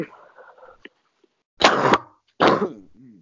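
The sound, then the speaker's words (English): Two loud, harsh coughs spaced about half a second apart, preceded by a faint murmur of voice and followed by a short raspy breath. “I just like sound that way pretty much anytime I cough.”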